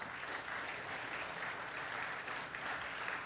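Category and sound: crowd, audience round of applause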